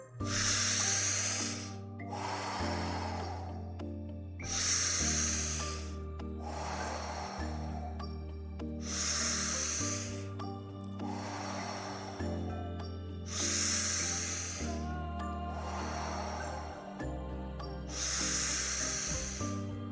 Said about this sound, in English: Find the breath, find your calm. As we begin round number 4. Deep breath in.